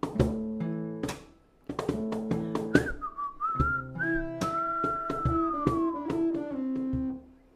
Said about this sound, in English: I love a little whistle. I definitely do a lot of whistling in my song.